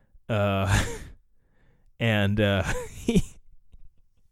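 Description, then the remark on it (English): A voice imitates the heavy, straining breaths of arm wrestlers in the final of a truckers' arm wrestling tournament in Vegas: two loud, drawn-out voiced exhales, like groaning sighs, separated by a short pause, alone with no other talk. “The eyes that they make and shit when they're fucking arm wrestling, it's just, they're bulging out of their head and just breathing real heavy.”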